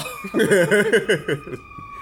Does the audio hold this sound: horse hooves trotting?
no